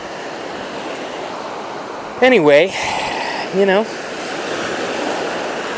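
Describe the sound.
A steady wash of ocean surf rushing up a beach fills the whole recording, with a man's voice speaking briefly over it partway through.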